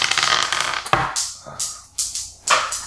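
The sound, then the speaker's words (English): Dice, a D6 and a D8, clatter and roll across a hard tabletop in a damage roll, starting with a dense rattle, then several sharp bounces and clicks that settle with short pauses between them. No one speaks. “Let's see if she can do some damage. That's a D6 and a D8.”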